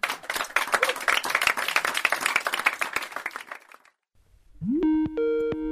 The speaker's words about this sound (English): Hey, yo, check this out. Got ourselves a phone call.